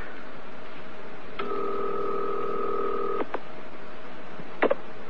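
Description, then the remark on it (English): A telephone line tone hums steadily for about two seconds, bracketed by sharp clicks, then a brief double click as an operator connects a call from a payphone to the New Milford police. No one speaks over a faint line hiss. “One moment, please. I'll connect you.”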